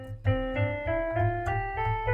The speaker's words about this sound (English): A C major scale.